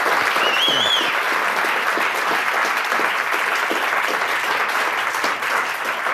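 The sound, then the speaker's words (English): Steady, loud applause from a live audience in New York, many hands clapping continuously for several seconds, with a brief whoop or whistle rising near the start. “Oh, yeah, clap. New York, give them a shout out.”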